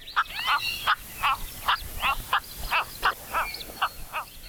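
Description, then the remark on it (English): A series of short, harsh, croaking cattle egret calls repeats in quick irregular bursts, roughly a dozen rasping notes over a few seconds, with faint higher chirps in the background and no talking. “You can often hear the calls of cattle egrets as they fly overhead in flocks to their roosting areas at the end of each day.”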